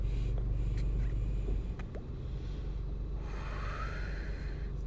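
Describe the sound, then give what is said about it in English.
A long, steady draw of breath through a Black Label vape cartridge, a soft airy hiss with a faint whistling tone over low background rumble. No one speaks. “This one I'm smoking is from Black Label. So let's take a hit, guys.”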